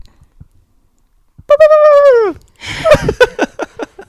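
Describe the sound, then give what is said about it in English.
A human voice imitates a bald eagle: one loud, drawn-out cry that slides downward, then a quick run of sharp, chattering squeaks, with silence before it. “I'll try a bald eagle.”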